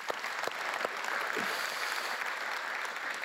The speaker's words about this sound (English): Yeah, we can clap. Sure.